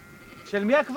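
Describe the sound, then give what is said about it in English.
A sheep grazing in a village schoolyard bleats twice in quick succession, a wavering, nasal cry that rises and falls, clear against a quiet outdoor background. “So whose sheep are grazing in the schoolyard?”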